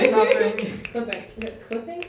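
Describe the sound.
A string of sharp finger snaps, about seven in quick, slightly uneven succession, given as silent applause in place of clapping while voices murmur underneath.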